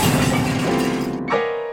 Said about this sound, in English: The ever-grumpy creature defiantly sprang right back up, only to have the vase come crashing down on his head.